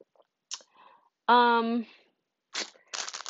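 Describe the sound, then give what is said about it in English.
Crinkly, papery rustles and clicks come in short bursts, like a chocolate wrapper being handled while eating, with a brief voiced hum or syllable in the middle. “I'm eating some chocolate.”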